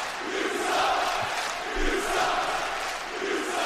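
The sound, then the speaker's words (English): A crowd-cheering sound effect: a large crowd roars and cheers continuously, a dense wash of many voices that swells and dips slightly over a few seconds, loud and steady throughout. “This is a crowd boom.”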